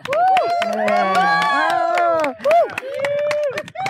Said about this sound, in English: It's really strange to see a bunch of protesters cheering at the news that the cops are on their way.